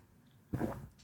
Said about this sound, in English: I should take a sip of water.